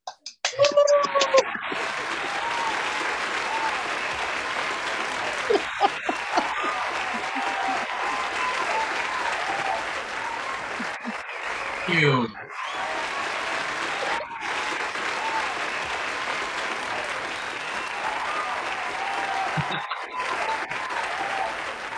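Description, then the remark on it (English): Sustained applause from a sizable live audience welcoming a guest onto a show, a dense steady wash of clapping that holds for the full stretch, with a few brief whoops and shouts rising over it. “Thank you for that, the raining applause.”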